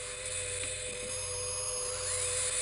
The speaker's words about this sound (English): The UFO's coming in very fast towards the Croxley house. And this is a horrifying build-up for to the end of Mrs. Croxley here. Hearing that sound.